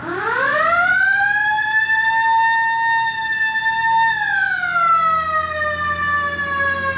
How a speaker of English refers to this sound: All right, hit the siren.